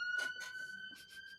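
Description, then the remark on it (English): A faint siren of a passing ambulance holds a steady, high-pitched wail that rises slightly, broken by several short bursts of hissing noise, with no one speaking. “Hang on, there's a siren going by.”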